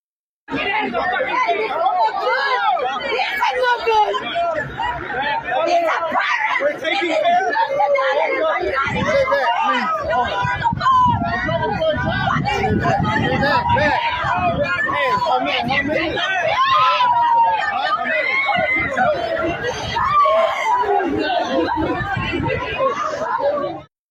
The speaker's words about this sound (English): And there is video of some of that. Parents outside the building screaming for intervention, being held back by armed and armored police of various agencies.